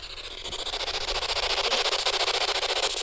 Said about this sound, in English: All right, so what you don't know, the spirit box here will run through radio stations, and supposedly spirits can talk through white noise.